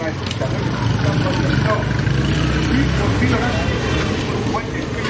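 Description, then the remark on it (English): A dense, steady roar of street traffic with engines rumbling, overlaid with a murmur of many voices from a crowd on a street in Lagos, Nigeria, continuous and loud throughout. “Ah, the sounds of the street in Lagos, Nigeria. Traffic, people, music, a crush of humanity you won't find anywhere else.”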